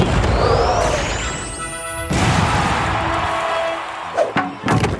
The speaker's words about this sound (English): instead of fighting his clone, he takes his mallet and smashes his stomach with it.